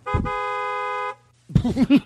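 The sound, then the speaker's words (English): A single loud, steady car horn blast holds for nearly a second, then cuts off; after a brief pause, voices break in with rising, bouncy vocal sounds. “Honk your horn right now if you're listening in your car.”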